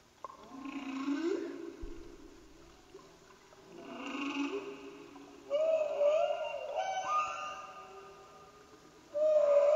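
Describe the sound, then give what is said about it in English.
Humpback whale song: long, drawn-out moans that rise and fall, followed by higher whooping cries and sharp squeals, loud and echoing with no talking over it. “It's a humpback whale song.”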